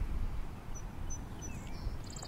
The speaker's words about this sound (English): Just listening to the birds, relax. Listen to the birds. Hi, birdie, birdie. Where are you, birdie, birdie?